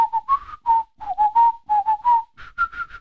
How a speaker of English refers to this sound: Yeah, you could whistle one.